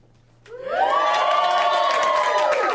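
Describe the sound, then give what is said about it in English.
The left half of a large concert crowd breaks into cheering, swelling quickly from near silence into a loud, sustained roar of many voices with high whoops and shouts that holds steady to the end. “And he was like, okay, left side, make some noise.”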